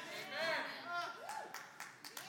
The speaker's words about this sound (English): Amen. Thank you. You're not clapping for me.